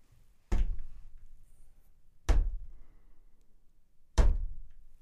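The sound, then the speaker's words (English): Three heavy knocks, evenly spaced almost two seconds apart, each a dull thudding impact with a short decay, on a quiet background with no talking. “And if you did, it's one knock for yes, two for no, three for fuck Del Taco.”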